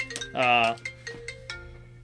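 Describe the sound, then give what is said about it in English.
A phone ringtone for an incoming call sounds during a recording in one loud, bright electronic burst of bell-like tones lasting under half a second, with a voice and other softer sounds before and after it. “we getting a call.”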